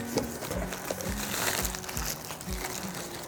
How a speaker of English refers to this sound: Out comes bubble wrap in a bag.